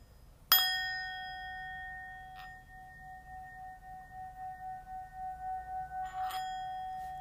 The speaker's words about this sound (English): Let me ring the bell one more time because it just seems so right.